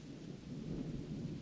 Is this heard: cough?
no